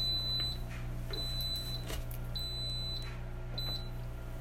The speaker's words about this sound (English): That was our chicken in our Instapot telling us that it was done.